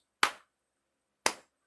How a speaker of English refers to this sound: Clapping. Slow clapping. Slow clapping. Slow clapping effects.